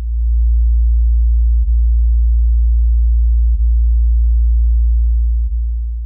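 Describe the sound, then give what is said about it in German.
A steady, deep sine tone hums continuously at constant loudness, with a few faint clicks interrupting it briefly; no voices are present. “Jetzt haben wir den Sinuston.”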